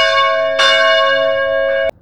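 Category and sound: signal or alarm, bell ringing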